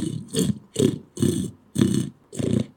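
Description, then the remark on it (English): A fallow deer buck in the October rut belches six times in a steady rhythm, each deep, rough, guttural grunt following quickly on the last, fairly loud with no voices. “Well, yeah, and of course, then with the deer, as the fallow, when the fallow come into rut in October, you'll get the belching sound they made.”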